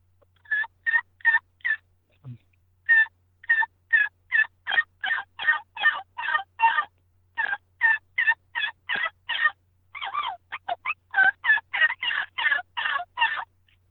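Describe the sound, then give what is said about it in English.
A rubber diaphragm turkey call produces a long run of raspy yelps, around thirty sharp notes in steady rhythm with a brief gap, each note buzzy and mid-to-high pitched, loud and alone without talk. “And that's what we're doing, is we're trying to create to where that rubber vibrates to create the rasp.”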